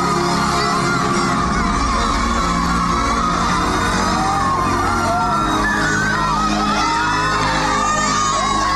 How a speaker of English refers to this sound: And there was a lot of commotion and everything because it was unheard of. And, you know, they started shouting. They're shouting, Maji. Maji, Maji means water. They're shouting, water, water, because it was actually coming.